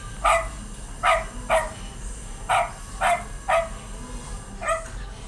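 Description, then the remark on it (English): A small King Charles spaniel barks seven times in short, sharp yaps, spaced irregularly over a few seconds, clear with only a faint low hum behind it and no talking. “It's a King Charles.”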